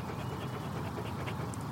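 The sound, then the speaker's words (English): A dog named Rosie pants steadily in quick, rhythmic breaths, a soft continuous huffing with no voices over it. “All I know about nature is that Rosie likes to roll in the turds of other animals.”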